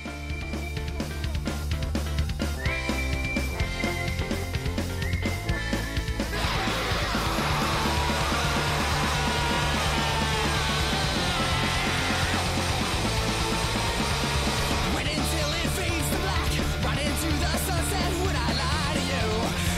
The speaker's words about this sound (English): Is a spaghetti western intro, Keenan. Got some whistling right into a big old scream out of our buddy